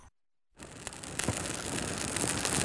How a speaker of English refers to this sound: Oh, it's raining. Aww. It's raining at this bonfire. We better put a tent up.